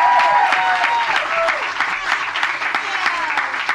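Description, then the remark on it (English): An audience at a comedy show claps steadily and loudly throughout as the next comic, visiting from LA, comes to the stage; a dense wash of hand claps with a few whoops and cheers rising above it. “Round of applause for the very hilarious”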